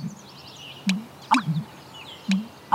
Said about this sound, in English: And rarer sounds like the call of the American bittern, a wetlands bird in steep decline.